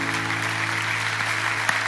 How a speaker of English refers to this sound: Let's stand up and give them a round of applause and honor them.